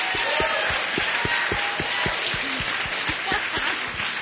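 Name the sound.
audience clapping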